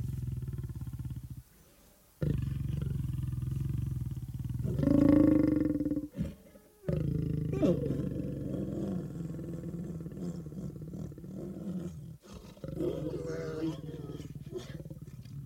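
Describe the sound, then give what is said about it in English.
A lion roars in a series of deep, rumbling, loud bursts, with brief pauses between each long, guttural call and lower grunting tails. “today, through sound, he'll introduce us to the animals that we take for granted and the animals that we love, like a lion, for instance.”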